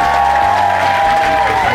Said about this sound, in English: So will you please give a massive round of applause to everyone tonight